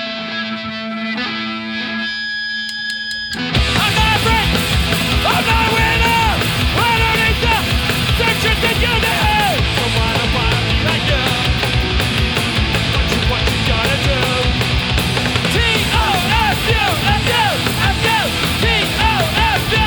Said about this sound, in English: I probably faint. I scream a lot in this one, and I get dizzy now that I'm old.